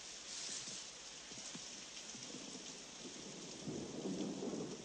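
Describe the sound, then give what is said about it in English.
Steady rain pours down with a constant hiss, joined by a low rumble of thunder swelling toward the end. No voices, just the storm filling the space. “And now, if you'll excuse me, I hate the rain.”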